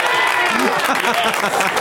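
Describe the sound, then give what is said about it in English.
A burst of live audience applause with cheering voices mixed in, a dense, steady wash of clapping that stays loud for the whole couple of seconds. “And the crowd goes fucking crazy.”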